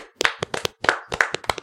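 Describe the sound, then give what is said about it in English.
A short burst of hand clapping, about a dozen sharp, crisp claps in an uneven, quick rhythm that lasts under two seconds, with no voices. “Let's do a little clap for Dick.”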